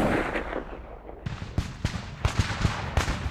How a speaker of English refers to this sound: The streets rang out with booming rifle fire and the battle cries of angry men.